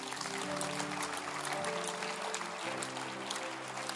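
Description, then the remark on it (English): An audience claps for its lay pastors, loudly and continuously for the full stretch, a dense crackle of many hands over steady, sustained organ-like chords that shift pitch partway through. “Clap for my lay pastors.”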